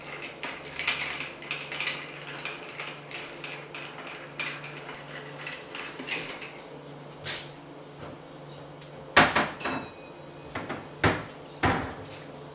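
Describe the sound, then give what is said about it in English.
Ice clinks and rattles steadily as a cocktail is stirred, a continuous patter of light glassy taps that turns into a few sharper, louder clacks toward the end. No one speaks. “stirring a cocktail, you want to stir it for a significant amount of time longer than you would shake a cocktail.”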